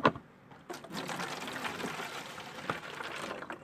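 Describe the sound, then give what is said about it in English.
Urine pours steadily from a bottle into a jug, a continuous splashing gurgle lasting a few seconds, after a brief clink at the start; no one speaks. “Then I pour the pissed up bottle into the jug.”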